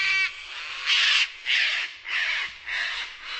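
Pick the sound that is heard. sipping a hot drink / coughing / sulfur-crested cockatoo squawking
sulfur-crested cockatoo squawking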